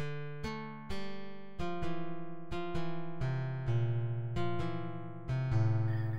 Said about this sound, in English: I'm too afraid that this will get back to him, so I'm just going to bleep all that out.